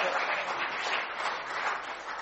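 A crowd gives a round of applause for a volunteer coming up to play Mary, clapping steadily in a dense, continuous round, the noisy patter holding an even loudness from start to finish with no voices standing out.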